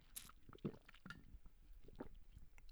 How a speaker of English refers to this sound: I wonder if you could hear me gulping.